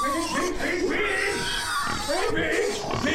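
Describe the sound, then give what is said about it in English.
A hungry pig offered corn husk and a corn cob grunts and oinks repeatedly, with loud squealing snorts running through the whole stretch while a voice talks over it. “Pig! You like corn husk, don't ya?”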